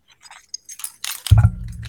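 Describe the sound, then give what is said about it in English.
Keys on a keychain jangle and clink in a few short bursts as they are held up, followed by a dull low thump and rustling as the keychain is handled. No one speaks. “Now let me see your keys. Just hold them up.”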